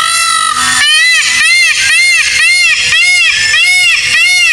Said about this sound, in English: Until you let me listen to an audio recording of a peacock, right, I don't think you can tell me that that is not how they sound.